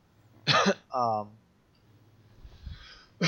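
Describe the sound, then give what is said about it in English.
A sharp cough bursts out, followed by a harsher throat-clearing rasp, then a quieter breathy stretch before another brief sound at the end. “pardon me for coughing.”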